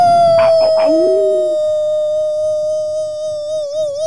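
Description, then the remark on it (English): A man's voice imitates a wolf howl, a 'hockey howl' for HockeyWolf.com, a single long sustained tone held for about four seconds, wavering slightly at the end, loud, with a brief burst of noise near the start. “Take that for a howl”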